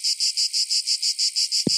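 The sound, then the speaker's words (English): A loud, steady cicada buzz on a very hot day pulses rapidly in an even rhythm with about eight beats a second, unbroken, ending with a brief low thump. “We call it the hop bug. Cicada.”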